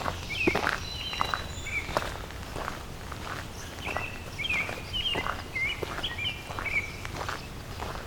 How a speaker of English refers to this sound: American robin up ahead.